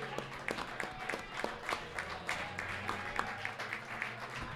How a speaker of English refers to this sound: We give a round of applause again.